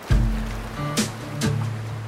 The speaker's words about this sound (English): put their 18-foot canoe into the water.